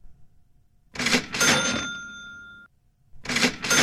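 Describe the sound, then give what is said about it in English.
A cash register sound effect rings out loud: a mechanical clatter, then a bright bell ding that fades, followed by a second clatter starting again. No one speaks. “you're going to need a bigger cash register than the sound of that one.”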